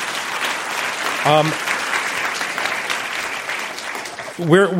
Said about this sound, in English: Some of the questions tonight were some of the best we've ever heard in any debate we've ever done. So thank you for all of that, and applause to yourselves for that one.